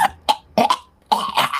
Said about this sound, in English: And takes his one match and he goes ahead and lights it. He takes a big long drag and then starts hacking and coughing.